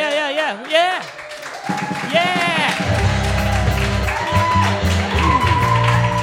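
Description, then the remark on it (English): Clapping and cheering from a small group, with whooping voices rising and falling over it, building into a fuller, steady wash of applause that stays fairly loud throughout. “Are we gonna do the applause thing?”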